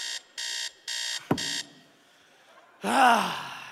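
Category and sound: household object, alarm clock going off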